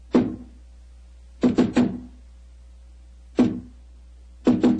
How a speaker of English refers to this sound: Who knocks?